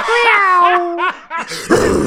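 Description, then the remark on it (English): A former football player imitates the fierce growl he always made when heading the ball: a short, strained growl-like vocalization, starting with a tense pitched sound and ending in a rough, raspy burst, loud. “So the first, go on, come on, give this like, a growl.”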